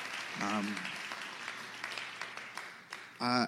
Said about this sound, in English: Can we just give a round of applause to everyone who's taken part so far? It was really class. Loved it.